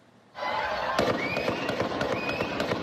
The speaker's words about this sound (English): A sudden burst of gunfire 10 minutes after the start of a 4th of July parade sent parade participants and spectators running for their lives. Police said the gunman opened fire from a nearby rooftop.